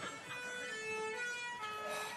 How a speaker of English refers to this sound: In the midst of their conversation, we hear like a siren, don't we?